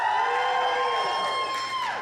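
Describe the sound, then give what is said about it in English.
A crowd of Georgia fans in a room cheers and yells loudly at a steady, dense level, many voices blending into a sustained roar with high-pitched whoops rising above it for the full two seconds. “Y'all are real loud.”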